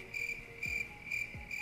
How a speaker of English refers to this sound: You want to press the... I need to be able to reach the buttons, dog. Press the crickets.